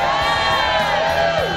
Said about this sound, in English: Wow, that's not an enthusiastic crowd there. That's got the going through the motion sound to it.